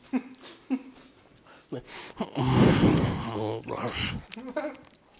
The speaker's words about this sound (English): Since I have the mic next to my mouth, on that, I'm pretty sure everyone can just hear me sipping water right there. So, this is going to be a very unique episode of the Pledge Podcast. Everybody's hearing me breathing while trying to chew.